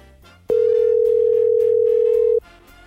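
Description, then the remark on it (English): A single steady ringback tone from an outgoing phone call sounds loudly for about two seconds, over a rhythmic music bed, with no one talking. “I'm going to get him on the phone and see how he's feeling, see what's going on with this COVID stuff, and what he's looking for now in the Stanley Cup playoffs.”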